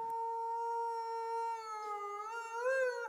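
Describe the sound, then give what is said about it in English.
A single long wolf howl, held on a steady, clear pitch before rising and wavering near the end. It is fairly loud, with no other sounds or voices. “Why do wolves howl?”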